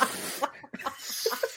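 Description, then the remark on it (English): Exaggerated, forceful sniffing: a quick series of loud, breathy nasal snorts with short gaps, no speech, somewhat harsh and almost cough-like. “I'm going to demonstrate that by sniffing.”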